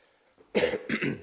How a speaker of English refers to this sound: And I have a little bit of a cold, so bear with me if you hear any coughing.